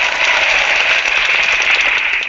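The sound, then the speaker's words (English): A clapping sound effect from the props in a Hangouts video chat, a dense, steady crackle of many hands applauding at once, fairly loud and continuous for a couple of seconds with no voices. “there's different sounds you can make, props like a birthday cake, you can make a ka-ching noise, various like clapping.”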